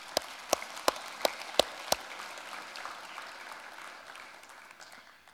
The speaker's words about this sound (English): Yeah, we can clap for that.